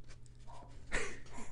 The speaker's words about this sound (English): It's like she waits until I start recording to bark.